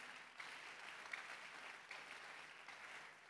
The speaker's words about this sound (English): You're clapping. You're clapping. You're clapping. You can do better.